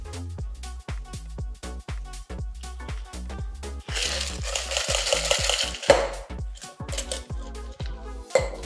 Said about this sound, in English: Double strain that because you've got your marmalade solids in there. Double strain it straight into your cocktail glass.